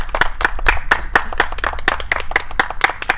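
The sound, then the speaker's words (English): A small crowd at the Anchor Inn in Irby claps steadily and warmly for a few seconds, the hand claps dense with a rhythmic, slightly uneven patter and no voices. “Round of applause.”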